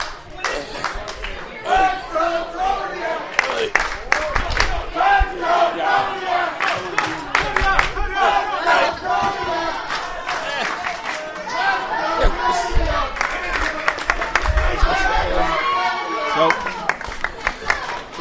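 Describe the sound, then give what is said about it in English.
A large, lively wrestling crowd of children, adults and teenagers at a Monster Factory show cheers, shouts and claps continuously, with sharp scattered handclaps and rising chants throughout, loud, while a voice briefly speaks over the din. “they have a good crowd here.”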